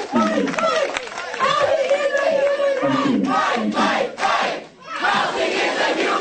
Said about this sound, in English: They filled the place, and the line was still going around the block, so lots of people didn't get in. But the ones who did were loud, screaming, yelling, that kind of thing.